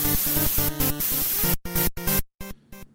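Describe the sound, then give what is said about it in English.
A phone beeps out a rapid run of electronic tones that step up and down in pitch over a harsh hiss, ending in a few shorter, separate bursts. No one speaks. “Thank you for beeping, phone, and reminding me that you are still on.”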